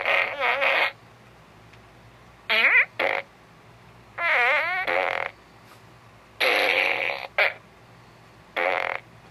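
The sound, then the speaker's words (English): Electronic fart noises from a Minion fart gun toy, which has LED lights, blare out in a series of five or six loud, warbling bursts, each lasting about a second, separated by short pauses, with no talking. “And this is the Minion fart gun.”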